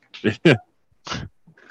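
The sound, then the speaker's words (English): A dog whines in three short, strained bursts, the first two back to back and a third after a brief pause, ending with a faint breathy whimper, while keeping its owner company at the computer. “My dog likes to hang out with me when I get on the computer.”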